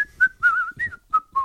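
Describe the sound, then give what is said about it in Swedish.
Someone whistles a short, bright tune, six or so distinct notes rising and falling with brief gaps between them, and no one talks over it. “Jag visslar för mig själv, kom jag på när jag cyklade hit idag.”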